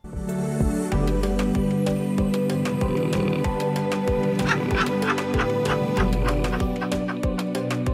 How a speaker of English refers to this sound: It uses the soothing sounds of real people snoring combined with soft twinkling music to help you relax. Here's a clip from that song.